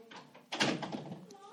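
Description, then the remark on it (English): A door shuts partway through with a firm thud, and someone is talking around it before and after. “Can you close the door and don't listen to Dad say the bad words?”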